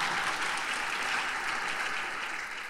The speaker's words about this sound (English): I thought somebody'd clap over that.